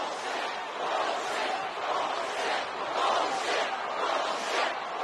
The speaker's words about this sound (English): The crowd appears to be voicing its displeasure.